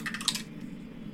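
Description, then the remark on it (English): A quick burst of light clattering clicks as a die tumbles across a table, lasting about half a second before fading into a quiet background hum. “My die was not happy that I just did that.”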